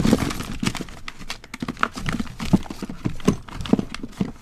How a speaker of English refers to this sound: Listen, everybody listen to me as I dig through my junk drawer.